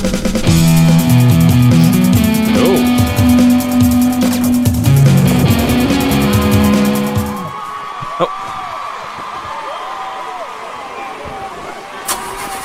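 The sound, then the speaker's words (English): A car engine strains to start, a loud droning, wavering hum with shifting pitch that labors for about seven seconds, then cuts out abruptly, leaving a quieter background with faint warbling tones. “Sounds like a Ford Pinto starting. Having some trouble.”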